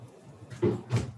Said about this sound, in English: You close the door behind you.